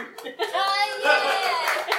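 An audience applauds steadily for a couple of seconds, a dense wash of clapping mixed with high cheering and whooping voices that swells and holds without dropping off.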